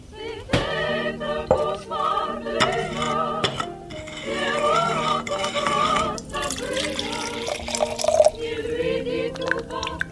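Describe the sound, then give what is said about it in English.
Liquid pours and drips into a glass amid light kitchen clatter while a Caesar cocktail is being made, layered over continuous background music with no talking. “I'm going to go make you one.”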